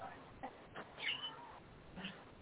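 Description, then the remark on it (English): A cat meows a few times in short, tonal calls spread across a couple of seconds, moderately loud over a faint background hiss. “We're about to leave the cat into the flowers.”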